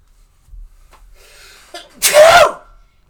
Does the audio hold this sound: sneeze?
yes